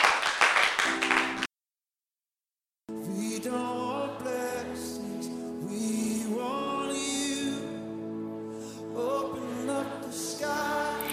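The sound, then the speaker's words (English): A short burst of dense, loud clapping from an audience clapping for Jesus as they take their seats cuts off abruptly into silence, then music with sustained tonal notes begins and carries on. “Why don't you clap for Jesus as you take your seats?”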